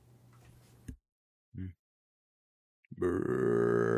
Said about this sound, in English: This soda is very burpy. When I do that burp noise, can you hear it?